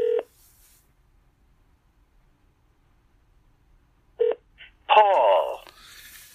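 Two short, loud telephone keypad tones from dialing to place a call sound about four seconds apart, followed by a brief burst of another warbling, voice-like sound and a faint tail of noise.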